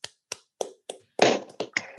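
Scattered hand claps from people unmuted on a call, a few sharp single claps at first, then quickly thickening into overlapping clapping from several people, a brief, modest round of applause with no talking.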